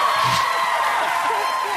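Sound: crowd cheering wildly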